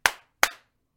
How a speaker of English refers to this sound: Do a little clap for us.